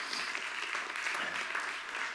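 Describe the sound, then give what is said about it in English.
An audience gives the Lord a hand clap, clapping steadily, a dense wash of overlapping hand claps with no clear rhythm, holding at an even level from start to finish. “Somebody give the Lord a hand clap if you believe that.”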